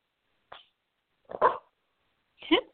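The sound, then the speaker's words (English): A puppy lets out three short, high yipping barks with whiny, whimpering edges, spaced about a second apart, fairly loud. “My puppy is encouraging her.”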